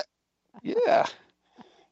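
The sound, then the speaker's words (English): A single sharp sneeze bursts out, a quick inhale building into a loud explosive release, followed by a brief faint murmur. “God bless you.”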